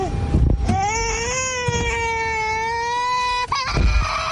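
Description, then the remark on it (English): A baby boy in a car seat cries in one long, loud, sustained wail after seeing his mother, who just got a chemical peel. A brief gasp cuts the wail off before the sobbing starts again, with a low rumble of background noise underneath. “Baby is happy as can be as Dad puts him in the car seat, but his smile quickly turns upside down.”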